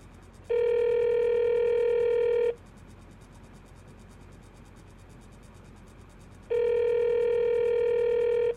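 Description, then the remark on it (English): While calling the police department, two long electronic ringback tones sound over a telephone line, each about two seconds, separated by a few seconds of faint line hiss, steady and fairly loud with no one talking. “Ringing the police department.”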